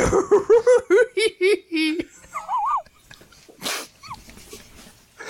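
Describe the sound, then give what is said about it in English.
A voice doing a Scooby impression, imitating the cartoon dog: a rapid string of short, rising and falling yelping syllables like goofy barks and whimpers, followed by a couple of squeaky gliding vocal notes and breathy laughter. “I'm going to have to go with the ridiculous Scooby impression.”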